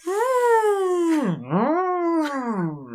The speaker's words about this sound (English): Oh, man, I'm so happy that there's elephant sound effects. Oh, there's a herd of elephants just over the ridge.